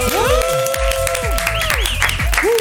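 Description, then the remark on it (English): A round of applause for WeRave from a group, congratulating them on their achievement, dense steady clapping lasting a few seconds, mixed with some cheering and voices in the background. “Okay, let's do one small round of applause then.”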